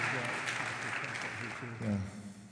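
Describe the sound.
A crowd claps steadily for a couple of seconds, a dense patter of many hands at moderate volume, with voices talking and murmuring underneath the applause.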